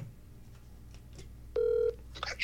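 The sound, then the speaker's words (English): A telephone line sounds a single steady electronic ring tone, about a third of a second long, against a quiet background, followed by a few faint clicks and beeps like dialing. “Better chance for him just not picking up at all.”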